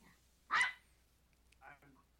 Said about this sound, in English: I've got a little dog attack here. My dog here, he knows when I'm doing podcasts. He did this to me one other time where he decides you're not going to get through this whole thing without me screwing it up.